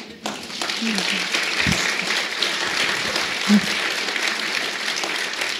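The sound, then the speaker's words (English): An audience applauding steadily, a dense wash of many hands clapping at an even level throughout, with a brief low thump partway through and no clear voices on top. “Such a nice audience. Just clapping.”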